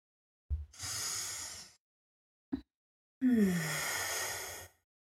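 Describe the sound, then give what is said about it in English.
Two long, airy breaths of a rhythmic breath-of-fire practice, a drawn-in inhale followed after a short pause by a full, sighing exhale, with a tiny mouth click between them and no talking. “So that was just a very short 3-minute practice of rhythmic breathing, rhythmic breath of fire, where the breath length is the same on the inhale, on the exhale, and it's just that rhythmic pulsing breath that moves through the body.”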